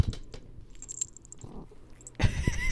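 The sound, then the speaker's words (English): Scattered soft clicks and faint high ringing tones, then a sudden loud burst of crunchy, rustling thumps as a cat bites and gnaws at the microphone. No one speaks. “You bit the mic, though.”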